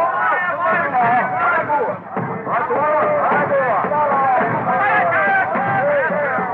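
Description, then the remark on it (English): A dense, excited crowd of tribesmen in a big native village in Africa babbles and shouts all at once, hailing Henry Stanley and his company; many overlapping voices rise and fall in a loud, continuous hubbub with no single speaker standing out. “Yes, there's certainly a crowd out to meet us.”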